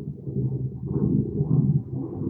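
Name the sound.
airplane flying overhead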